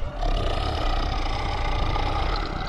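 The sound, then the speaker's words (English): A deep, rumbling monster roar holds loud and steady for a few seconds, continuous, with no talking over it. “It's a big roar.”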